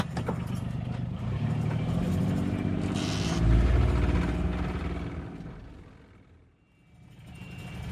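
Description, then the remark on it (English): The heavy diesel engine of a combine harvester rumbles, swelling to a loud peak as it passes along a narrow lane in a tight squeeze, its wheels mounting the soil on either side, then fading before the low drone builds again. No one speaks. “Oh my God, so the combine harvester is literally mounting the soil on either side.”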